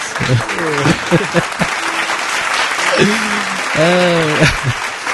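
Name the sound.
round of applause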